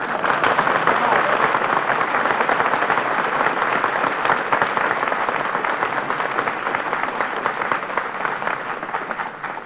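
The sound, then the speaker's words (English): A studio audience of about 300 people applauds steadily for about ten seconds, a dense, even wash of many hands clapping at once that holds loud throughout and eases only slightly at the end. “That terrific applause you just heard, folks, is breaking Benny's heart.”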